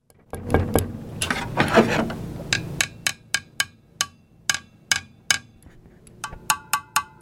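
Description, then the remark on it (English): Crisp knocks on the hard glass front of a CRT tube TV: about a dozen sharp, slightly ringing taps in an uneven rhythm. A stretch of rustling, rumbling handling noise comes before them. “Number one, if you knock in the front, it's hard glass.”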